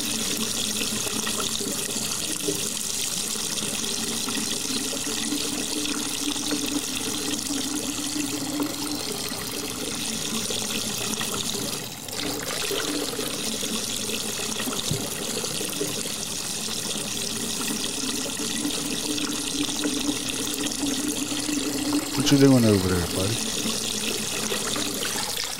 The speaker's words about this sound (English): Are you peeing in the water? Evacuation complete. Still peeing in the water.